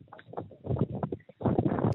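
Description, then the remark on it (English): Wind in a windy area buffets a caller's phone microphone during a radio call-in, in loud, irregular low rumbling gusts over a narrow, telephone-quality line, nearly continuous with a brief lull midway. “It sounds like you're in a windy area, Gus, so I'm going to ask you maybe to try and turn around”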